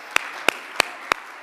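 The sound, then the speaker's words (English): A church audience at a worship service claps hands together in unison: five sharp, crisp claps at a steady, even beat, roughly three per second, over a faint continuous background murmur. “Would you just clap your hands with me?”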